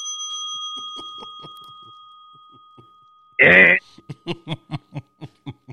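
A bell is rung at the mention of Tyson Chandler, ringing out with a sustained, slowly fading tone, then a sharp loud burst cuts in, followed by rhythmic bursts of laughter.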